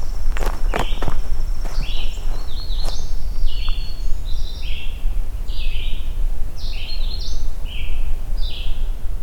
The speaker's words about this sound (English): there was a chipping sparrow. But hopefully it vocalizes again.